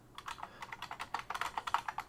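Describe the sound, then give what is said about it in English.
Rapid, irregular clicks of someone typing on a clicky computer keyboard, fairly quiet, with bursts of keystrokes packed together and no voices. “You're going to hear my clicky clacky keyboard, right?”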